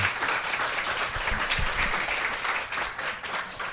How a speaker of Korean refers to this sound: 박수 한번 박수 한번 주세요.